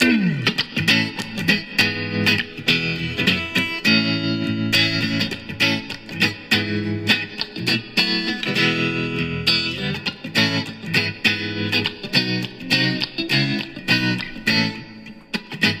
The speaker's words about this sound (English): you're gonna be hearing her rendition of that song while I poorly play a guitar and attempt to butcher lip syncing it.